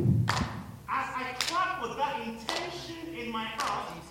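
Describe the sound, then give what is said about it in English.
Four sharp hand claps made by the speaker's hand ring out at a steady pace, roughly one each second, crisp, with a voice sounding continuously underneath between them. “Sound coming from my hand is not just now a natural sound.”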